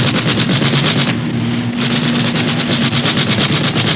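gunfire

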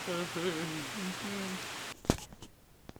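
rain

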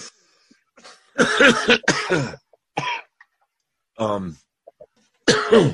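coughing fit

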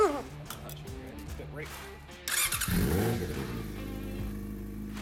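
motorcycle engine revving

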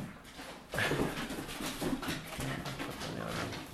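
dogs whimpering and panting

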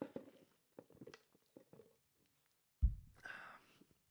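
sipping soda

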